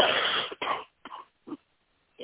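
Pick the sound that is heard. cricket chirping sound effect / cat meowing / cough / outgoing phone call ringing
cough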